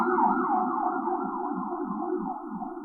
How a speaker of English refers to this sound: Oh, wow, the sirens are really loud. Hang on. I let them pass.